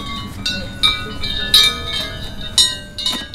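A hand-held chime, one of those carried by thirteen performers, rings repeatedly in irregular, bright metallic strikes, each tone hanging and overlapping the next, over a low outdoor rumble with no voices.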